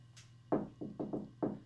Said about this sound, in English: She did a very strange knock. She did.